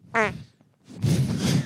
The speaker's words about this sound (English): When you fart on mic, that's exactly how you want it